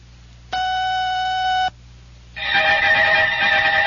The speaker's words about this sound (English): This is WOR 710 and WOR FM New York, owned and operated by RKO General at the WOR time signal exactly 1 o'clock.